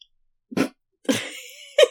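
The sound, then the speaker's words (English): Three quick sneezes in a row, each a sharp burst of breathy noise, the second drawn out with a trailing whine before the last abrupt one; no talking. “And so if you're short on cash this Valentine's Day, just make someone sneeze and you'll cause them to potentially skip a beat.”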